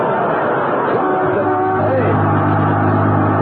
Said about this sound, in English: that's a Los Angeles bus. What's it doing up here in Alaska?